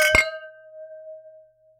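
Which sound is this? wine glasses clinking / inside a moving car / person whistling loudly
wine glasses clinking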